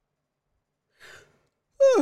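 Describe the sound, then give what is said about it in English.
A person yawns: a soft breathy inhale, a pause, then a loud voiced exhale sliding downward in pitch, cut off abruptly. “Yawning shit. Excuse me, guys.”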